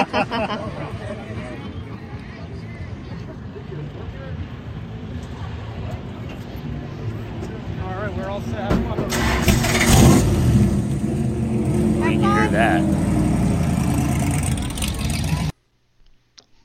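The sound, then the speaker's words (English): The engine of the black number 96 stock car at the Daytona Speedway, during the NASCAR Experience, fires up about midway through and keeps rumbling loudly and steadily, while people talk over the background noise throughout. “So that's me getting into number 96 black stock car at the Daytona Speedway.”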